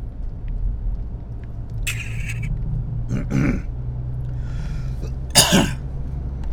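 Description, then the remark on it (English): Someone sips water from a bike squirt bottle: three short, hissing spurts and slurps spaced a second or so apart, the last one sharpest, over a steady low hum with no talking. “I'm going to take a sip of water here. This is going to be a really weird noise because I'm using my squirt bottle from my bike.”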